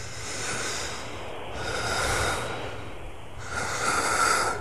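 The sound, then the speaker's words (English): Slightly wheezy breathing of a person with a wheeze breathing normally, about three slow in-and-out breaths in a steady rhythm, with no talking. “Listen to me wheezing. This is me breathing normally.”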